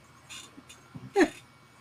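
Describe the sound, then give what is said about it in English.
A dog lying at a person's feet whimpers in a few short, soft bursts, ending in a brief, louder rising whine, with no talking and a quiet background between the sounds. “My dog's at my feet right now.”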